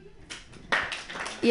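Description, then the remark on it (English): Scattered applause from a small part of a stand-up comedy audience, clapping if they are not dating, a loose patter of claps that swells briefly and then thins out, with a voice starting to speak at the very end. “Clap your hands if you're not dating.”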